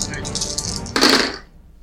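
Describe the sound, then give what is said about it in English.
Dice being rolled for damage in a tabletop game clatter and rattle together, building to a louder burst of rolling clicks about halfway through before quickly tapering off into quiet. “All the shiny dice.”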